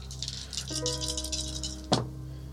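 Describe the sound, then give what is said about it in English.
Many dice rolled for a medical check clatter and rattle steadily for about two seconds, then land with one sharp knock, over a low steady hum. “So many damn dice.”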